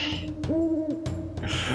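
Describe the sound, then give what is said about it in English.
A single low, hollow owl hoot rises and falls for about half a second, standing out over a steady background rumble and noise with no voices. “It is time to see if this owl catches you.”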